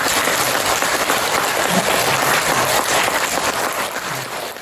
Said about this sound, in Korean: 큰 박수를 한번 좀 하세요.